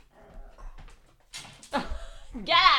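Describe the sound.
A dog having a fit lets out a few sharp, high-pitched yelps and whining whimpers in quick bursts, growing louder toward the end, with faint murmuring voices in the background.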